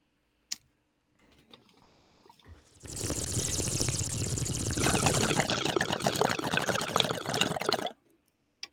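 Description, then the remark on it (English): A single sharp click, then a few seconds of quiet hiss before a loud bubbling gurgle of water, from someone smoking, churns steadily for about five seconds and stops abruptly. “So if you hear bubbles, maybe a lighter, maybe some coughing, be an adult.”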